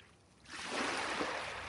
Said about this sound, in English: Waves lapping the beach, wind bending the trees, and the tides pulling the pebbles along the shore.